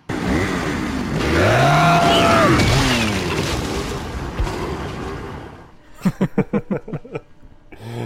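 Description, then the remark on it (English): A chainsaw wielded by a chainsaw-carrying enemy in a video game revs loudly for several seconds, its whine sweeping up and down in pitch, then cuts out as a few short bursts of a voice follow. “I mean, one of the enemies was the chainsaw guy.”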